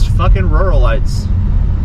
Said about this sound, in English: See a lot of vehicles. Oh no, another pickup truck.